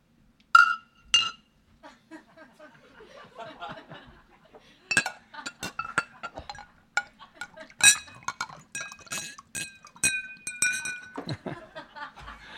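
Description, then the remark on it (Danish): Beer glasses clink together in a toast at a funeral gathering, a few bright chimes near the start and a cluster of ringing clinks later, amid soft murmuring voices and light chuckles. “Skål.”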